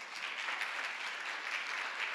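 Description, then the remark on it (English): A standing church audience claps steadily together for about a minute, a dense, continuous wash of many hands with no pauses, bright and crackly, holding an even loudness throughout. “I want everybody to just stand up, and I want you to just clap for a minute.”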